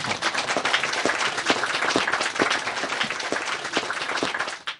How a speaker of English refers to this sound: But I'm really grateful, okay? Now you can clap for yourself.